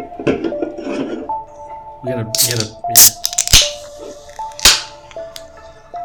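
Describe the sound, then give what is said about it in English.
A can of sparkling water is handled and cracked open next to a microphone with a few sharp metallic clicks, followed by a bright, hissing fizz of carbonation. Brief murmured voice sounds appear in between. “I just want to do the fizzy thing by the mic again.”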